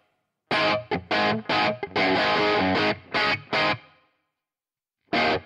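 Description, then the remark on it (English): An electric guitar played through an amp modeler with reverb, with a distorted, effects-heavy tone, plays a run of loud, choppy chord stabs, then a reverb tail rings out into a short silence before one more strum begins. “Yeah, it seems like a lot of reverb. It's the high end that makes it seem like a lot.”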